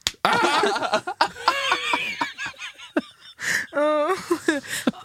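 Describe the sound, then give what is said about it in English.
Two quick slaps of a hand patting a woman's face, sharp and brief, mixed in with giggling laughter and voices. “And you just patted her face twice.”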